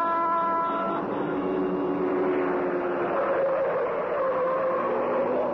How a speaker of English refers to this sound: Like a glittering black comet in the darkness, the car of the Green Hornet whipped through the city streets. So fast was it, and yet so easily did it handle that the Black Beauty could make twice the speed of ordinary cars with more safety.